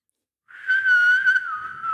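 Someone whistles the Lassie TV theme tune, a clear, fairly loud tone that starts after a brief silence and holds a mostly steady pitch with gentle rises and dips. No one speaks.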